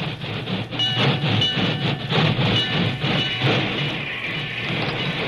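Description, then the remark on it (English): A steam work train arrives on the main track beside a telegraph office as rain slackens to a drizzle. Its loud, steady rumble carries a rhythmic clatter of wheels, with a thin, wailing locomotive whistle tone threaded through the noise. No voices. “It was only a short time later, and the rain had slackened to a drizzle, when a wailing locomotive whistle announced the work train's arrival on the main track beside the telegraph office.”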